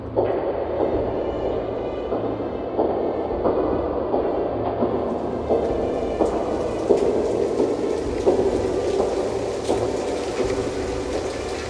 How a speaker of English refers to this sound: It is quite rainy, isn't it?